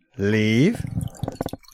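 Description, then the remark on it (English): A drawn-out voiced sound gives way to a short run of gurgling, dripping splashes as a weak-coloured, chicken-smelling liquid is poured from a bottle into a bowl for Forrest the dog, fairly loud, ending in a few quick plops. “I'm pouring it out for the dog.”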